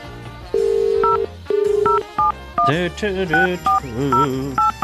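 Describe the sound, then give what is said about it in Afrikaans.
Two longer steady phone tones followed by a quick series of short beeping telephone keypad dialing tones, clear, with a voice talking underneath in the second half. “Nou wat gaan dan weer aan met hierdie foon vir my vandag? Oké, okay, so kom ons trek, ek het geweet, kom ons try weer.”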